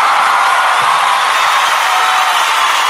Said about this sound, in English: Can we get a round of applause for all the hard work that he does?